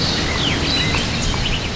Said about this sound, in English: Many people like the sound of birds. It's very nice to wake up to sunshine, blue skies, and birds singing.